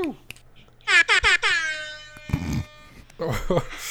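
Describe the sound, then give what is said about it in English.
An air-horn-style siren sound effect blares in four quick, loud, bright blasts that ring out and fade, followed by a short burst of noise and then people talking. “The single siren.”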